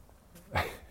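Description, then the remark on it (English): A dog being walked gives a single short, sharp bark partway through, against a quiet background with a faint breathy whine around it. “I'm walking the dog and we're ideating here.”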